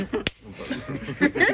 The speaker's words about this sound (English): I'm gonna slap his bald head.